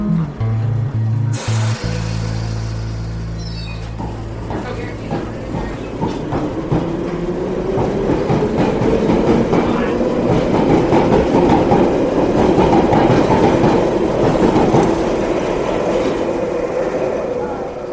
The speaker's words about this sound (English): Stand clear of the doors. The East train is now ready to depart. Stand clear.